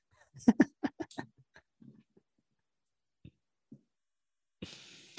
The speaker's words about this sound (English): There's some barking dogs that tell me probably